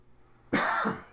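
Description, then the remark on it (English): A single loud cough, while breathing in the alcohol of a liquor, bursts out abruptly after a moment of quiet, harsh and breathy with a throaty edge, lasting about half a second before trailing off. “As … coughs about it.”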